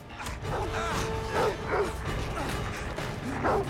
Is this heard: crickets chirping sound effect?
no